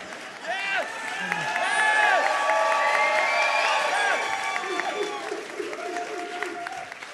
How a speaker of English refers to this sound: Applaud. Applaud.